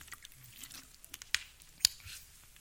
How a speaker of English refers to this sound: We're guzzling all the water.